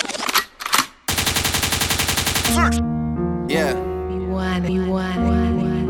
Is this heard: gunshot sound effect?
yes